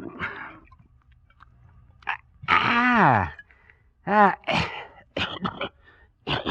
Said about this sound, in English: Yeah, have a swig. Oh, my, you swallowed wrong, huh?